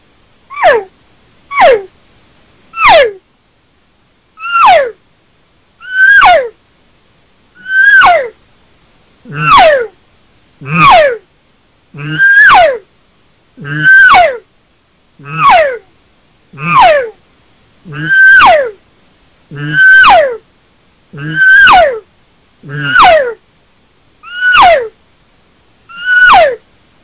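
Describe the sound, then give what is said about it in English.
A person imitates cow calls by voice with a steady series of about eighteen high, downward-sliding mews, loud, starting with normal cow calls and building into high-pitched, excited estrus screams, growing fuller and more urgent, with no other talking. “I'll turn it up a little bit and get into more of that high-pitched, excited stuff and, you know, that kind of estrus scream that I do so the listeners can hear the difference.”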